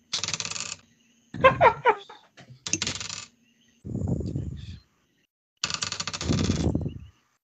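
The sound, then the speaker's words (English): Dice are rolled for damage against a baby Gorgon in a game, rattling and clattering across a surface in several separate bursts, bright clicky tumbling sounds with brief pauses between them, fairly loud. “Dice, come back.”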